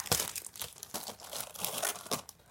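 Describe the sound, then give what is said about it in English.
Gift wrapping paper being torn open and crumpled, a steady run of crinkling rips and crunches with short bursts over a couple of seconds, no voices. “All right, I got you guys gifts. Go ahead and open it. You guys have your own wrapping paper.”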